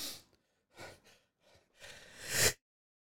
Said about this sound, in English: Dude, the I sneezed so hard I hit the shoe check. Holy shit. Oh god, that was crazy.